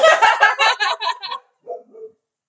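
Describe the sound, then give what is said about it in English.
A female dog barks in a quick, loud burst of about six sharp barks, followed after a pause by a couple of softer, lower yips or whines. “My dog joined in.”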